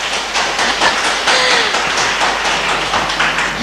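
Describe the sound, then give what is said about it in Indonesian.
A crowd claps steadily for several seconds in applause for the Venerable Bhikkhu Sri Panyawaro Mahathera on his 50th birthday. The sound is a dense, even wash of many overlapping hand claps that holds at a fairly loud level without pause. “Tepuk tangan untuk Bante.”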